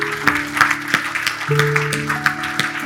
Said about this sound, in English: Can we just applaud the Lord for those who want to give their lives to Jesus?